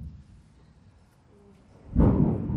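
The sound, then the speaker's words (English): Thunder rumbles low and steady, then swells abruptly into a louder, fuller roll near the end, heavy and deep with no voices present. “Hear the thunder. That's a nice sound.”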